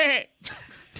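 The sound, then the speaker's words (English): A person lets out a short, nasal, wavering bleat in imitation of a goat, loud, followed by a brief pause and then quieter voices talking. “Can you make a goat noise?”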